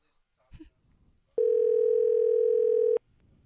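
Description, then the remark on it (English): A loud, steady telephone dial tone while placing a call holds for about a second and a half after a brief clatter, then cuts off abruptly, leaving faint background murmur. “Can we call him?”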